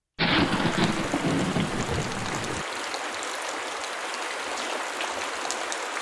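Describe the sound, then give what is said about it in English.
Heavy, steady monsoon rain in the high desert of the southwestern United States pours down with a deep rumble of thunder rolling through the first few seconds, then fading out, leaving a dense, hissing downpour with no voices. “Where I live in the southwestern United States in the high desert, we have a monsoon season every year.”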